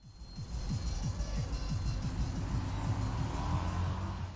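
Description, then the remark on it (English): Bass-heavy house music thumps from a passing car in a city centre, its muffled beat and low synth line pumping steadily under faint street noise, with no one speaking. “And it starts, as with all the best reports should do, with some banging house music from a passing car.”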